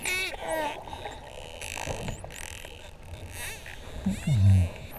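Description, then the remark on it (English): A bottlenose dolphin's signature whistle underwater: several high, sweeping whistles that rise and fall in pitch, with a steady hiss of water noise and a brief low rumble near the end. “While bottlenose dolphins make many kinds of whistles, every dolphin has its own unique whistle”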